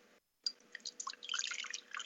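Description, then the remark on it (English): A still, uncarbonated, honey-gold drink is poured into a glass: after a brief silence, a steady, gurgling trickle of liquid runs for about a second and a half, fairly quiet, with no voices. “And the pour.”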